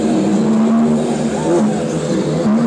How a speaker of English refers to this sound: Gotta let Philly go through. Everybody riding their three-wheel cars.